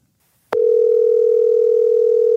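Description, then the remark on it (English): A telephone ringback tone starts abruptly after a brief silence and holds as one steady, loud electronic hum through the end, with no voices present; a phone call placed with Siri. “It's ringing”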